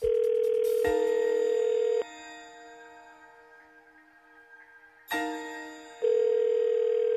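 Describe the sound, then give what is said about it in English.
A telephone ringback tone purrs steadily and loudly while a call connects, with one quieter stretch in the middle before the tone returns at full strength. No one speaks. “All right, let's get her on the phone. Here we go.”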